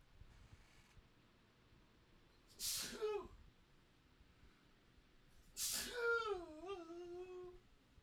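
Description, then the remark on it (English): Two sneezes a few seconds apart, each a sharp, loud burst with a short voiced tail, the second one longer and more drawn out, with faint room noise between. “Oh my God, double sneeze.”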